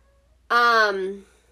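A single drawn-out cat meow, fairly loud, rising in strength and then sliding down in pitch as it fades, with quiet room tone before it.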